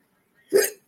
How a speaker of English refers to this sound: I know, spirit's coming through because I'm burping.